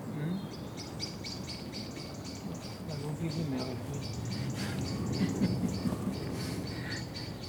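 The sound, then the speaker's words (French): Small songbirds, such as tits, nightingales, robins and redstarts, chirp and sing steadily throughout in quick, high repeated notes, with soft voices murmuring low in the background and a constant outdoor hum beneath. “c'est plus les oiseaux, c'est joli. C'est les petits, oui, c'est ceux qui chantent, les mésanges, des rossignols, des merveilles, tout ici.”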